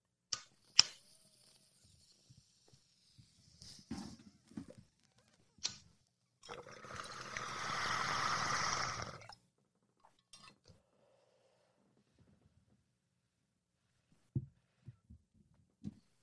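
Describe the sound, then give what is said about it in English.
A few glassy clinks and taps, then about three seconds of steady bubbling water from a bong being hit, followed by near silence and a couple of soft knocks. “Every time I take a hit of my bong, I'm like, yeah, back at it again.”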